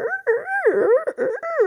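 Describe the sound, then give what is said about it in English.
A voice imitates the squeaking wheels of a dog's cart, which has wheels at the back, with a run of wavering, rising and falling squeals, about five connected swoops in quick succession, fairly loud and alone. “It was on wheels at the back. So it would get around and the wheels would go.”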